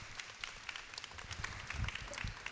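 A crowd claps steadily to welcome a speaker up, a dense wash of many overlapping hand claps with no pause, moderately loud and continuous throughout.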